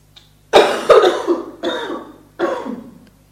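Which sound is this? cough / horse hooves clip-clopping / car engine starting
cough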